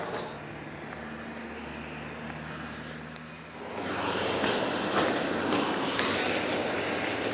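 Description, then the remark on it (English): Two construction vehicles rumble with a low, steady engine drone as they head along a jetty on a remote desert island, then the sound swells into a louder, rougher wash of noise as they come on, with no talking. “A couple of construction vehicles are just heading towards me along the jetty, so I'll have to be quiet for a moment.”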